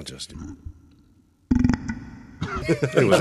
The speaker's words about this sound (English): Clearly. What does a beer burp sound like with the demon phone? It's got to sound terrible.